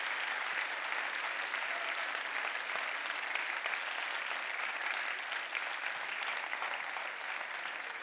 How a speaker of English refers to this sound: Stand with your brothers and sisters who are clapping for you because they know what Jesus has done.